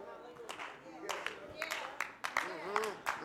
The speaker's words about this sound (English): Oh, I should get more claps than that.